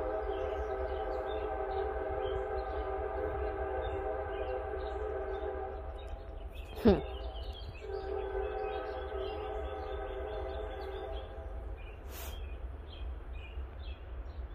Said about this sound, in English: All right, if that wasn't a confirmation, you heard how loud that motherfucking train was?